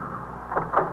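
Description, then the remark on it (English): A car engine rumbles and slows to a halt in front of the apartment house at 781 East 68, a brief low mechanical hum that swells slightly at the end, with no voices. “I instructed Farrell to stop the car.”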